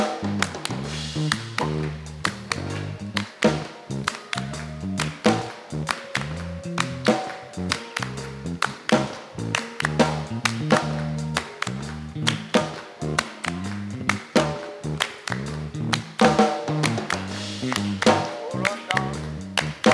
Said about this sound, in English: A clap to his glory.